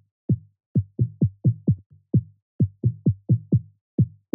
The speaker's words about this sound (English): So instead of a standard four to the floor rhythm, I included these subtle kicks in between the main kick, which sound a bit like this.